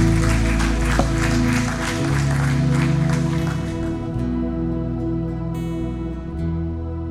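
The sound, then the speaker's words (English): A church audience claps and applauds people coming forward, at River of Life ministry in East Missoula, Montana, over sustained music. The dense applause fades out partway through, leaving the steady tones to carry on. “Come on, church. Give them a round of applause.”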